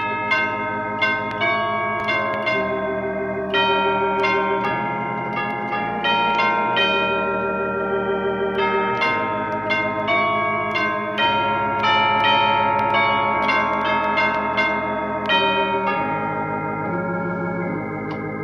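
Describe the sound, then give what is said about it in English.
Church chimes play a slow hymn melody, each struck tone ringing and overlapping the next in a steady, resonant sequence, loud with no voices. “Since it talks about the gospel bells in the church, I shall play it on the chimes.”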